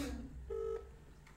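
A phone call being dialed to the Clayton Hotel Cardiff Lane: one short, steady electronic telephone tone sounds briefly and clearly, then fades into a quiet line with no voices.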